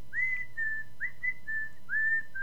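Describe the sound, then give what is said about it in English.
A person whistles the eerie, wavering American Horror Story theme in three rising-then-sustained phrases, each note sliding up before holding steady, moderately loud with a low background hum and no talking. “No, I like the American Horror Story whistle.”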